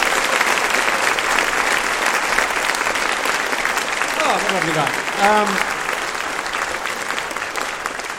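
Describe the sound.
A crowd claps steadily and loudly throughout, a dense, sustained wash of applause, while a single voice briefly speaks over it partway through.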